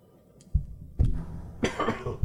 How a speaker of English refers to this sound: coughs